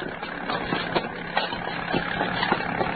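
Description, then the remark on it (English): An approaching airplane's engine drones steadily, a broad, rough rumbling hum that holds at a fairly even loudness with small surges, and no one speaks over it; the plane is bringing in actress Maureen Darling. “Here comes the plane, Doc.”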